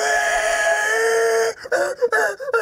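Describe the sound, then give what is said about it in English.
A male elk bugles, also called screaming, as part of its mating ritual: a long, loud, high whistling squeal held steady for over a second, then breaking into a series of choppy, uneven grunting chuckles. “So we call it screaming, but it's part of the mating ritual, basically, of the male elk. Yeah. And that's, they're just bugling, and we call it screaming because it's just like it's echoing.”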